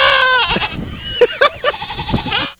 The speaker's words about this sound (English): That's weird. That is strange. I love those. Goats are weird animals.